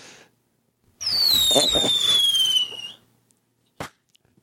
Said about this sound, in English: Whee! Firework?